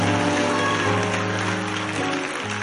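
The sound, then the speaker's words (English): A church audience claps and shouts together in praise to God in a dense, continuous roar of applause and cheering, steady throughout, with sustained musical tones humming underneath. “Now, that clap you just gave and shout you just gave, that was for your mother-in-law.”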